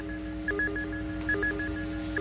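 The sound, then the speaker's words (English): A medical treatment timer signals with short, high-pitched electronic beeps repeating in quick rhythmic bursts, sounding over a steady low hum with no one speaking. “That's a treatment timer.”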